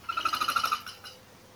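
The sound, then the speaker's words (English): The specialized wing feathers of an Australian crested pigeon whistle in a rapid train of about ten pulsing, reedy notes, loud, then fade out within a second as the bird flies off. “The crested pigeon of Australia, for example, has specialized wing feathers that make a whistling sound.”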